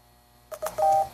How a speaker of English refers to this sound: And the little beep, bleep, bleeps indicate that it is completed processing of those four or five pages.